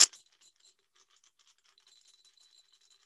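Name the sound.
dice being rolled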